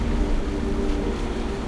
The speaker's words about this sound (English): It's a boat! Headed this way! How come they get to be on the water, but I can't? I believe it says U.S. Army.